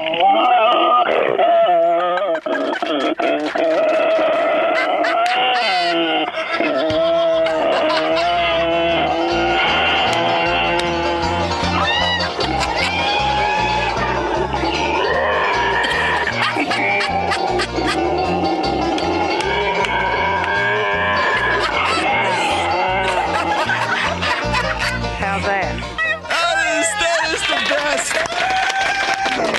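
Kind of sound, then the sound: animal, pig grunting and squealing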